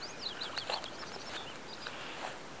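bird, birds singing

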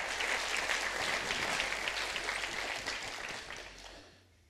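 crowd, audience clapping hands

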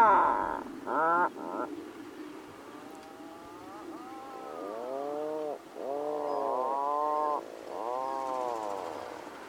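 bird, atlantic puffin call

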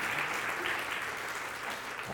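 crowd, audience hand clapping

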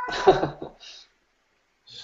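animal, cat meowing

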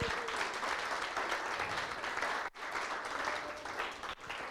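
crowd, applause

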